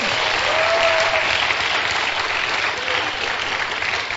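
Sustained applause from a large gathered crowd clapping for Jesus, dense and steady for several seconds, with many hands clapping at once and no distinct voices standing out.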